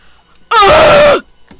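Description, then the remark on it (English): A single loud, harsh yell into a microphone bursts out for about half a second, strained and slightly falling in pitch, then cuts off abruptly into near silence. “Sorry, I just yelled into the mic.”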